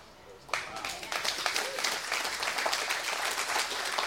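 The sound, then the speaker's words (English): A church audience bursts into applause during a sermon to give God honor, after a brief quieter moment: many hands clapping in a dense, steady roar with scattered sharper claps and a few faint voices mixed in. “If that was your bulge, you'd be clapping harder.”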